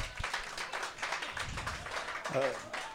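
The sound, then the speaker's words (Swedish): A short burst of applause for Champions League, dense rapid clapping spread across the whole three seconds at moderate volume, with voices talking over it. “En applåd för Champions League.”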